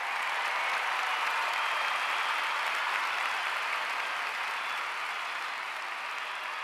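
crowd cheering and applauding

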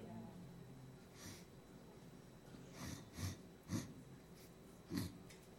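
person sniffing

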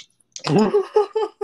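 coughing

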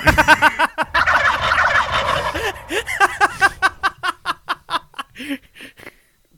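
turkey gobbling

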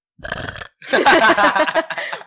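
loud burp

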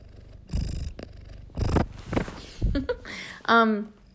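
domestic cat purring

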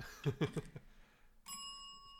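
bell being rung

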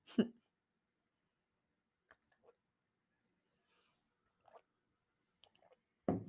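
sipping and swallowing water

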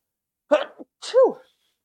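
sneeze

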